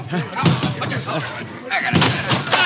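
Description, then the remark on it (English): Heavy, booming thuds strike a wooden door several times in an irregular series, loud, as it is broken in at the Goldman Tavern where Confederate Captain Willie Jett sleeps, with raised voices and commotion mixed underneath. “Break in the door!”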